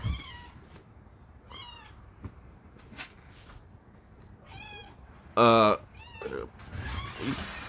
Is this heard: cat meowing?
yes